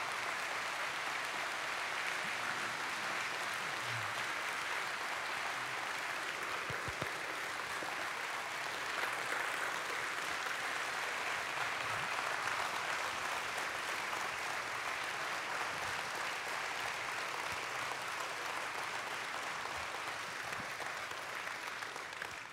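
An audience applauds steadily for over twenty seconds, a dense, even wash of clapping from many hands that holds at a constant moderate level throughout.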